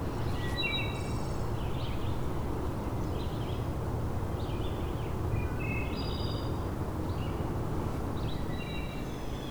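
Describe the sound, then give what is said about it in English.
Several birds chirp and twitter in short, repeated phrases in an old-growth forest in the early morning, over a steady, rushing background of wind or airflow through the trees. No one speaks. “And if you come in the early morning, quite a bit of birdsong.”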